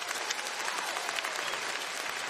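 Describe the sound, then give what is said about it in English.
A crowd applauds for what God did at this year's student conference, a dense, even wash of many hands clapping at once with no voices breaking through, holding at a constant level throughout. “One more time, would you give it up for what God did in student conference this year?”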